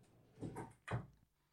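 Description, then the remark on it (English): A door swings shut: a short scraping movement followed by a solid, firm thud, then quiet. No one speaks. “I'm going to close this door behind me.”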